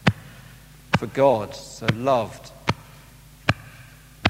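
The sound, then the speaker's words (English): A heartbeat sound effect: deep, evenly spaced thumps pulse about once a second, loud like a slow heartbeat, while a voice speaks briefly between the first few beats. “I don't know about you, but can you kind of hear that? It's like the heartbeat of the living God.”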